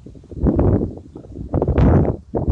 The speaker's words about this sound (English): wow, it's really windy. I hope you guys can hear this.